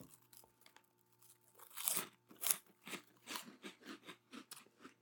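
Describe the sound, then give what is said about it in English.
Crunching of brand-new Cheetos Fries, a crispy snack with a French-fry texture: a string of sharp crackling bites followed by steady rhythmic chewing, loud, with a faint low hum underneath and no talking. “I bet they got a good crunch to them.”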